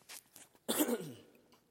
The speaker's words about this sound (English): I think that's better. Okay, I didn't want to cough right into the mic.